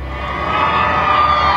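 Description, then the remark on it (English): A crowd cheering from a distance at a U.S. Navy homecoming as sailors manning the rails come into port, a steady, dense roar of many voices that swells slightly and holds at an even, fairly loud level for the whole moment. “And then from a distance, a cheer is heard.”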